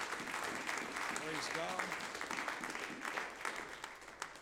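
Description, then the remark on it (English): A crowd claps steadily in a broad, continuous wash of applause, with faint voices calling out beneath it before the clapping thins toward the end. “Somebody clap your hands if you believe that.”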